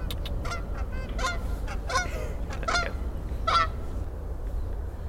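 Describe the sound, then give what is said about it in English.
A goose honks repeatedly in short, nasal calls, several in quick succession, over a steady low rumble of background noise. “Just get the goose come in with us.”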